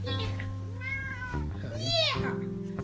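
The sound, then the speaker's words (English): Two drawn-out cat meows, rising and falling in pitch, sound one after another over a steady, humming musical drone that continues throughout. “Meow, meow. There's a kitty.”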